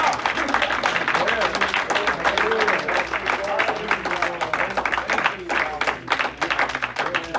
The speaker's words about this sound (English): I'm so thankful that He is here with us. Praise the Lord. So give Him a hand clap. Amen.